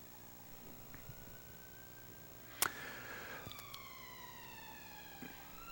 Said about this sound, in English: I'll let the siren go just to...